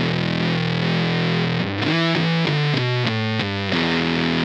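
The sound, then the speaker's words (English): An electric guitar played through a Shooksan fuzz distortion pedal from Spun Loud Effects, starting with a thick sustained chord, then a run of short, choppy notes stepping up and down before settling on a held, buzzy tone. “that was going through the Shooksan fuzz from our good friend Dan over there at Spun Loud Effects.”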